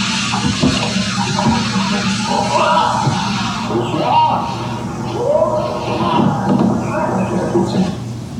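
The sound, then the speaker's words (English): A man shouts long, wavering yells outdoors at night outside a shelter, trading calls back and forth in bursts over a steady, rumbling background noise that runs throughout. “that was me yelling back and forth at one of them that night.”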